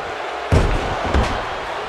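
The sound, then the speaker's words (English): Two heavy thuds land about two-thirds of a second apart, loud, like blows and a body slamming onto a wrestling mat, over a steady roar of crowd noise, as Brett hits Stone Cold with punches and a drop kick at the start of a rivalry wrestling match. “Brett now with some punches and a drop kick to get us started here.”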